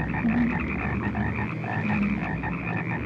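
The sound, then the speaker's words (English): A dense chorus of many frogs croaking at once, a steady, overlapping wall of ribbits and trills that stays loud and unbroken throughout, with no voices present. “Guys, you've no idea how many frogs are crawling at his feet.”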